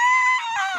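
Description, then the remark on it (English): A voice imitates a dinosaur scream: one loud, shrill, sustained cry that holds a steady pitch, then turns raspy and slides downward, lasting under a second with no other sounds. “But when the episode starts, a dinosaur screams.”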